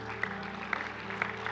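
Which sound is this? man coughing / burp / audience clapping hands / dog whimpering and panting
audience clapping hands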